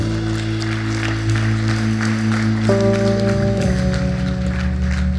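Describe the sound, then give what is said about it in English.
Many people clap steadily for a woman after a prayer for her, a dense patter of many hands, while sustained keyboard chords play loudly underneath and shift a couple of times. “Let's give her a clap, shall we?”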